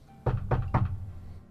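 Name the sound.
knock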